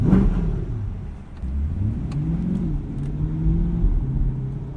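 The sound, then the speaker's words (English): A Stingray sports car engine revs as it is driven off the back lot of Musso's in West Hollywood, a deep, steady rumble, its pitch climbing and dipping in several swells over a few seconds, loud and continuous with no voices. “I drove the Stingray for the first time off the back lot of Musso's.”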